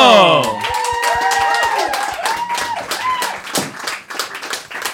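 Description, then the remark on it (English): An audience applauds with dense, steady clapping for the full five seconds as two people are welcomed onto a stage, while voices whoop and cheer over the top. “This is now the bit where there's going to be a lowdown of applause”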